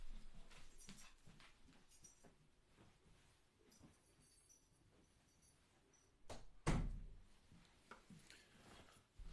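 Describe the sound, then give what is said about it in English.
Quiet shuffling and light pattering as dogs are put outside, then a sharp thump and rattle of a door closing, followed by faint rustling. No one speaks. “I have to kick the dogs out. They were super quiet, and then I started.”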